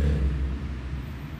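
A car rolls past, its deep engine and road rumble steady and fairly loud before easing off slightly at the end, with no voices.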